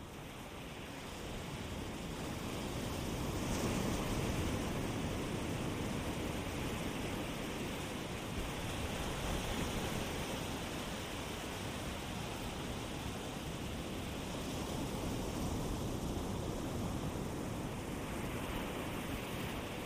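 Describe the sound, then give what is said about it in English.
Steady surf washes onto a sandy beach, a broad rushing hiss that swells gently and recedes back into the ocean without pause, moderately loud with no voices. “As you look down at your toes, sinking into the wet sand, you see the waves spreading over them, and then receding back into the ocean.”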